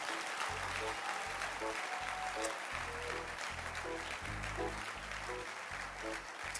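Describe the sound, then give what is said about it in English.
An audience claps their hands steadily, a dense crackling wash of many hands over a pulsing, rhythmic low beat, keeping time for several seconds without pause. “Don't stop clapping.”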